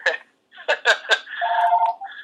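telephone ringing

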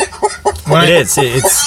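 chickens clucking

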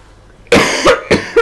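woman coughing

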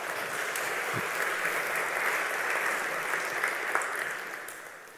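audience applause

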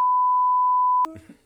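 censorship bleep tone

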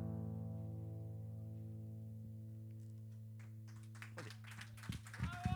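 faint audience applause

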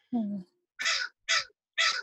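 crow cawing

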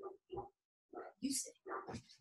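dogs barking

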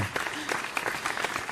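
applause

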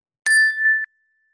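meditation chime ringing

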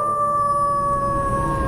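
wolf howling

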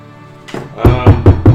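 knock on a door

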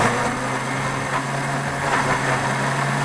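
blender running

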